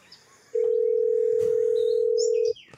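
A steady, loud telephone dial tone holds for about two seconds while calling Rite Aid, starting and stopping abruptly, with faint bird chirps in the background.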